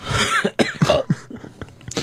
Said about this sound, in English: That just made me cough.